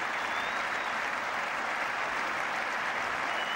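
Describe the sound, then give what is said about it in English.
Sustained applause from a cricket crowd and the Indian players on the balcony as Graham Gooch leaves the field, a dense, steady wash of clapping that holds at an even loudness throughout with no voices standing out. “Leader of his side, the Indian players applauding.”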